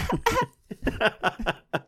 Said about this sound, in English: wait, let me cough